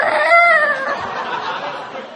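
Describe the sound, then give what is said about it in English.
A human voice imitates a rooster's crow: one drawn-out, strained, tonal call that is loud, trailing off into breathy noise. “And just at the moment, some random rooster.”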